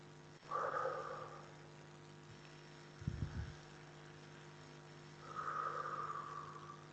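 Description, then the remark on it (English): Two long, slow, deep breaths drawn several seconds apart, with a brief low rumble in the quiet pause between them. No one speaks. “We begin to to take longer, deep breaths because we want to oxygenate the body as well as to clear the poisons out of the blood that can be cleared out by breathing correctly.”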